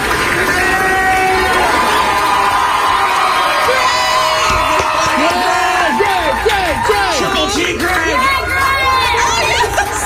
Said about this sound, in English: And it wasn't like a few people cheering him. The entire hospital staff, like, oh. everybody walked out and cheered yeah. for him.